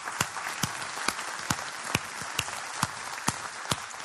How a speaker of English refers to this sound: Well, happy Mother's Day. Hey, let's give all our moms a big hand clap today.